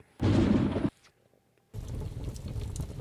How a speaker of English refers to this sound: Is that rain? It's a fireplace. Just turn up the fire a little bit.